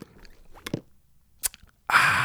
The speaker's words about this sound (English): So I'm doing the Starbucks cold brew, and it's working good for me. Let me get a sip right quick.